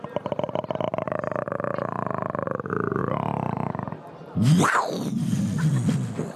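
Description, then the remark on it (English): A person imitates a big wild cat as a sound effect, first with a long, rumbling, rhythmic purr, then a sudden louder growling snarl that rises and falls. “So that is a sound effect of a wild cat.”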